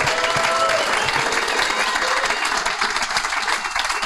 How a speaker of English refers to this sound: And I think we all owe you a huge round of applause for your efforts, for your work in this.